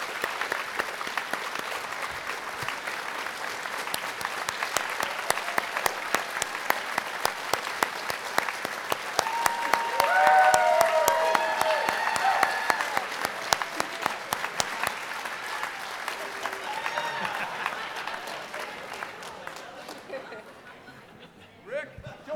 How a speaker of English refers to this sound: And I would like to invite them up here on stage so they can get a round of applause from you. Would you do that for me? It's worth it. It's worth it. The Book Nook, please.